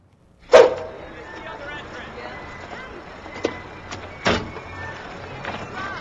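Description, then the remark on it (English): A car door swings open and bangs hard into another car with one loud, sharp metallic thud, followed by a few quieter knocks against a low, steady background hum. “I know you didn't think anyone would catch you, but you just slammed your door into my car.”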